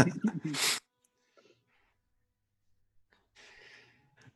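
A single loud sneeze bursts out at the start, sharp and breathy, then fades into near silence with only faint rustling afterward.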